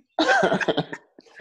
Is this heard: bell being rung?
no